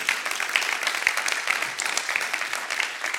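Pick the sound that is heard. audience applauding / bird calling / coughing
audience applauding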